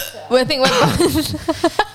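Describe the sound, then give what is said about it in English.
A voice makes a few vocal sounds, then a quick run of four short, sharp hiccups pops out in a steady rhythm near the end. “I've got the hiccups.”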